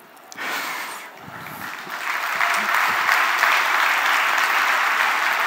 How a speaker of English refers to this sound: So if you think this stuff is kind of cool, how about giving it a clap so I know to continue?